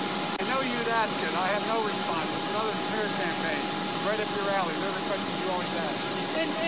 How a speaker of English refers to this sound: Okay, basically, I know it's a little hard to hear, but because there's a jet in the background, but Joe Biden basically said, I have no response to the smear campaign, blah, blah, blah, blah, blah.